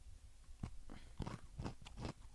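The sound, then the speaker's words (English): Crunching of a hard caramel toffee chocolate bar, a Dime bar, with about half a dozen crisp, loud bites and chews in an uneven rhythm and no talking. “I hope you can hear me crunching this.”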